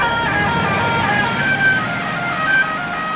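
Steady rumble of a car driving on the road, heard from inside the vehicle, with continuous engine and tire noise and a faint tonal whine drifting above it.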